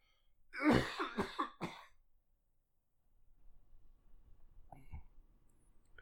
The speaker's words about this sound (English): Still haven't gotten much sleep in the last several days. Just coughing nonstop. My ribs are starting to hurt, and I feel like I pulled a rib muscle last night, and so every cough is another joy.